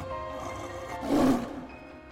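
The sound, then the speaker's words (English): A big cat, a giant white and gold striped tiger cat, lets out a single deep, rumbling growl that swells to a loud peak around the middle and then fades, heard over a low steady background hum with no talking. “His cat gets up. It lets out a big growl”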